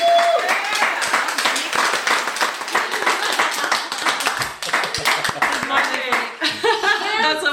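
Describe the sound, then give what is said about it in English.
A steady round of applause from a small group, dense crisp clapping throughout with cheerful voices, whoops and laughter mixed in, tapering near the end as people talk. “Should we have a big round of applause?”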